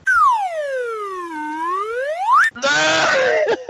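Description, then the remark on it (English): A loud wacky whistle sound effect glides down in pitch and swoops back up over about two seconds, followed by a brief, dense, buzzy burst of noise. “I put a wacky whistle after that one.”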